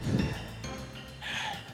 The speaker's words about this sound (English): Cut back to Inutaro breathing hard in the quad.